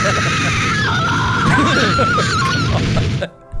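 A man screams loudly and continuously for about three seconds, his strained voice wavering in pitch, close up and harsh, before the sound cuts off abruptly.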